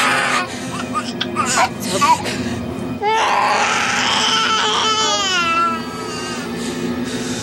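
An infant cries in rising, wavering wails, loudest in the middle stretch, over a steady background hum with brief scattered sounds before it.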